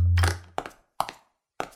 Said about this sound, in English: You dropped your cell phone.